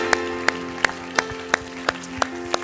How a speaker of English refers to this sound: Let's clap our hands one more time to Jesus.